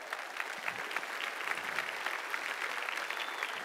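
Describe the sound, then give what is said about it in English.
A crowd claps steadily in a dense, continuous wash of applause, many hands overlapping at an even level with no pauses or voices standing out. “Give these guys a big hand as they're coming up.”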